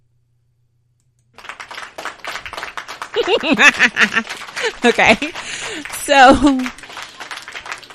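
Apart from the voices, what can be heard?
soundboard applause effect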